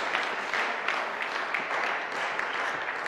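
Sustained applause from a crowd after a reading of a psalm, a dense, steady patter of many hands clapping at once with no pauses, fairly loud, without any talking over it.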